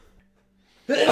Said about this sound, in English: Oh, I gotta sneeze.